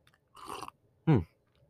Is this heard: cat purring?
no